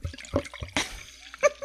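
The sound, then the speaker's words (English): A woman pours herself another glass of wine, a brief splashing gurgle of liquid that rises and fades within a couple of seconds, with a few small bumps around it. “I poured way more than I needed.”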